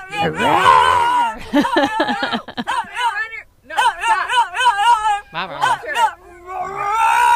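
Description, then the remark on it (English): Human voices imitate a dog, with wavering whimpering and howling sounds that turn into low, rough growls, fairly loud, in several bursts over about seven seconds. “People are getting a little Walter the doggy, which is good. Okay, all right. Then they get growly.”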